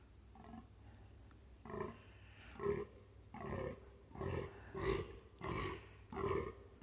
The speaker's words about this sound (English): I'm stood here on the deck, and there's this huge male fallow deer, I suppose you call it a stag in English, and he's trying to charm the ladies, but he's not being successful yet.